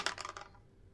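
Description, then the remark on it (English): Dice clatter across a hard tabletop in a quick burst of four or five sharp clicks that settle within half a second, with no one talking; the dice are rolled for an investigation check and total 7. “Why don't you go ahead and roll investigation?”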